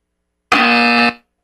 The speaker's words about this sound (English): I already know you're going to have a buzzer ready for it.